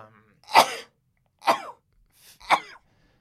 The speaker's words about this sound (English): Bless you. I hate sneezing. Yeah. Sorry. Yeah, because you lose control.